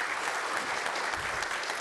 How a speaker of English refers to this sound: You win the prize for the longest round of applause.